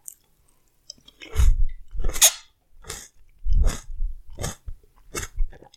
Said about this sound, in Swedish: Nu kör jag en körsbärstomat med stängd mun hela vägen.